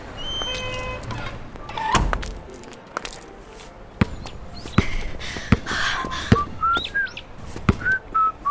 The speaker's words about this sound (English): Hide! Quick! A door!